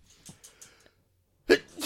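A person sneezes once, sharply and loudly, after some soft breathy sniffs and a brief pause, with another burst beginning right at the end.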